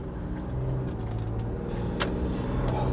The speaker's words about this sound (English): Avoid these cars real quick. Make sure I don't get hit.